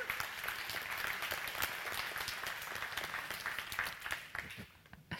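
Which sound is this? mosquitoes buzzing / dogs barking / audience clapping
audience clapping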